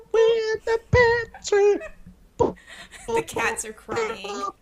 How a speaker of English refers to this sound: We're in the pantry. The cats are crying.